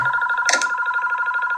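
A home landline phone rings with a loud, continuous electronic trill, a rapidly warbling high tone held steady throughout, with a brief clattering burst early on and no voices.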